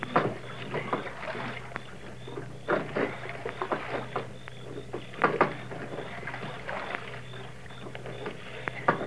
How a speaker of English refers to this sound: Now they've taken a boat and gone for a row on Lake Candlewood. Listen.